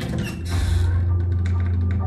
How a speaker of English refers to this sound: I push open the double doors.